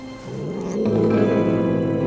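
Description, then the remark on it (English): A hairless female cat lets out a low, sustained growl that swells and grows harsher partway through, fairly loud, with no talking. “That's her weird hairless cat.”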